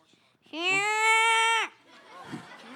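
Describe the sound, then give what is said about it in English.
A voice imitates the loud snoring of Joseph, asleep on the stairs in a Nativity telling: one drawn-out, buzzy, bleat-like tone lasting about a second, steady in pitch before dropping off abruptly, followed by faint murmuring. “And he somehow fell asleep and began to snore. And began to snore really loud.”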